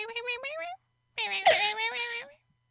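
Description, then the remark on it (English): A cat chirps twice, a short rising call followed by a longer, louder warbling one after a brief pause, with no talking around it. “He doesn't meow much, but if he sees birds, he'll chirp at them.”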